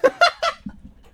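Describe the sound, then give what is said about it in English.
Three quick, loud goose honks in a rapid series, each nasal and brassy, followed by a few soft low thumps fading out, a sound effect for the ITV2 goose-themed game show Release the Geese. No talking. “ITV2 presents Release the Geese, TV's only goose-themed game show.”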